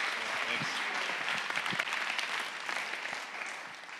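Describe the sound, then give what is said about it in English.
A crowd applauds a presenter for helping serve on the FAT team, steadily for about four seconds, a dense wash of overlapping claps holding an even, fairly loud level throughout with no voices standing out. “So he's going to walk through some of the numbers for you guys, but if y'all could give him a hand of applause for helping serve on the FAT team.”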